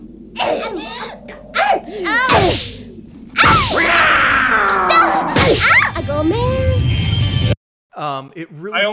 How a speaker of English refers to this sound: because they are like slapping each other silly and shouting at each other.